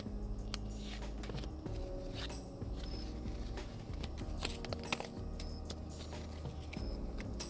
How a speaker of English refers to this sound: so let's go ahead and get to shuffling again for this first deck. You know, routine by now. Since we're playing Russian roulette today, we're going to shuffle this six times. Just like we have each of the other groups. And I shuffle right there.